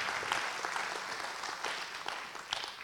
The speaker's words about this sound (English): So let's celebrate the Lord and let's just give an applause unto Jesus for all that He's done.